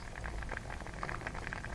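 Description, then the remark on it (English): A big pot of pasta bubbling steadily at midday while being made ready on the day of the Dunwich Dynamo bike ride, a dense stream of small pops and gurgles over a constant hissing simmer, with no voices. “Okay, this is midday on the day of the Dunwich Dynamo, so just getting ready with a big big pot of pasta. Here it is, bubbling away.”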